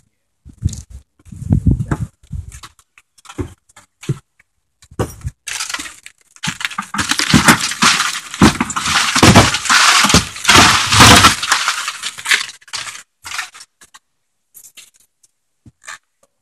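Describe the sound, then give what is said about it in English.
Broken glass crunches and crackles under booted feet in a building with much broken glass, starting as scattered crisp steps, then a dense, loud stretch of grinding shards midway before trailing off into a few sparse crunches. “That's why I wear boots when I come out here. You know what you're gonna do. Yeah, there's a lot of glass.”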